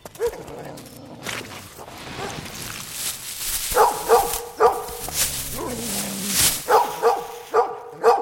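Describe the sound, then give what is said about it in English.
A dog barks repeatedly in sharp bursts while digging in a copse of trees, around six barks in two quick clusters, with softer whiny yips and rustling noise in between. “He tore off into this kind of, copse of trees and was digging and barking like a madman.”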